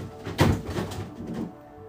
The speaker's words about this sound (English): I just had an avalanche. Everything's falling out the fridge. It's a domino effect. One thing falls, here goes the next one.